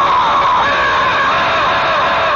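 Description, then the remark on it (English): A man imitates a brontosaurus roar like those in cheap Japanese late-night horror movies, a loud, sustained, strained bellow with a harsh, rasping edge and echo added, holding steady for a couple of seconds without pause. “And you know how brontosaurus sounds? It sounds like all the cheap Japanese late-night horror movies.”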